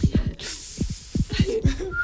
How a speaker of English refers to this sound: Those that don't know, she whistles by breathing in.